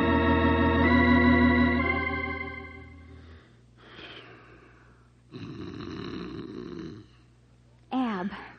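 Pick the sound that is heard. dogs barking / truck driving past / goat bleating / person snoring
person snoring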